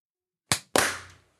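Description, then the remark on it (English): Two sharp hand claps for audio sync in quick succession, the second louder with a longer ringing decay, with silence before and after and no talking. “Let's do a clap.”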